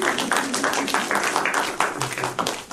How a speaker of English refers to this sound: I never get applause, but anytime. No, it's cool. Don't worry about it. Anytime, pity applause does not mean much.